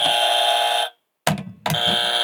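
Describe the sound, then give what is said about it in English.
A loud, harsh game show buzzer blares for about a second, cuts out, then sounds again in a brief burst with a clunk before a third long buzz starts. “We got game show buzzers.”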